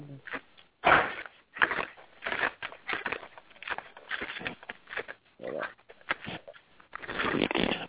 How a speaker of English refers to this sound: Somebody eating some rocks or something. Okay. I don't know who that is, man. No, it wasn't me. Something like paper moving or something.